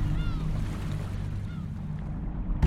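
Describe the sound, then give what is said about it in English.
A ferry's engine drones low and steady beneath a wash of wind and water noise, with faint chirps and a sharp knock right at the end. “He's been operating this ferry for the past 20 years.”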